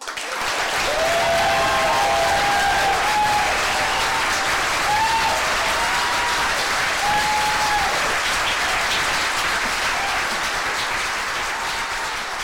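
A large audience applauds loudly and steadily for over twelve seconds in a standing ovation after the first story of the evening, the dense clapping punctuated by a few high whistles and cheers.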